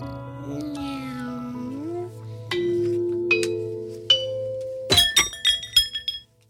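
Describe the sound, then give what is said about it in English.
A cat lets out long, drawn-out meows with a rising pitch, followed by a burst of sharp glass clinks and crashes near the end. “That is a gay cat. That is one gay cat”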